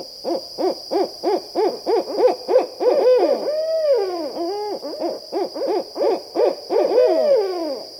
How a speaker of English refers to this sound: These are the rhythmic hoots of a barred owl, a large, stocky bird of forests, swamps, and suburban parks. Pairs may break into a rollicking duet, sometimes called their monkey call.